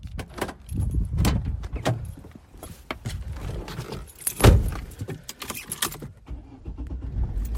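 Keys jangle as someone climbs into a car at about 12:30 on a Saturday to head to Vicarage Road for a Watford match, with rustling, clicks and a solid door thud midway, then quiet cabin shuffling.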